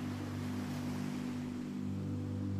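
A steady, continuous wash of ocean waves with no distinct breaks, layered over a low, droning hum. No one speaks.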